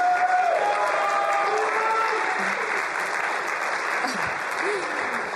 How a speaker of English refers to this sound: I'm surprised he's getting applause.